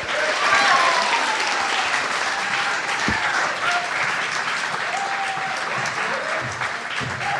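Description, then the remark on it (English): An audience applauds steadily as three guests are welcomed to the stage: a dense, sustained wash of clapping with scattered cheers and whistles rising above it, holding loud for the full length. “Please welcome to the stage and give a round of applause to”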